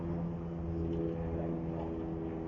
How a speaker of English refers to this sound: Sitting in the sun, plane going overhead.